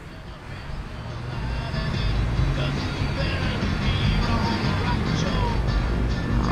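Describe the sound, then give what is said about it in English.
Steady road traffic of cars driving by in Los Angeles rumbles, a continuous wash of engine and tire noise that builds slightly after the first couple of seconds and then holds level. “As you can imagine, if you hear any of the rumors about Los Angeles, there's a great deal of traffic out here.”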